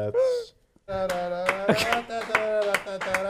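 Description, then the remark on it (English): A series of sharp hand claps, roughly a dozen in a loose, steady rhythm, sounding over a sustained tonal voice or hum, after a short pause at the start. “Keep clapping!”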